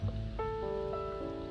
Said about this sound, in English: Is it raining? No, that's just the wind. It rained yesterday, but it's the wind. It's nice wind outside.